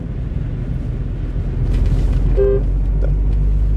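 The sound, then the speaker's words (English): A steady, heavy rumble of a car moving through road traffic, swelling louder partway through, with a short horn toot near the middle. No one speaks. “It's not even that much traffic on the road and you can't stay in your own lane.”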